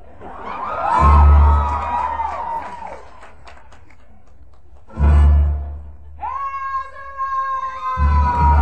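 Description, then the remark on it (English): Loud whoops and cheers rise and fall in a few bursts, with high sustained yells over deep rumbling thumps, like an excited concert crowd reacting. “Think about how much the crowd is so into it now.”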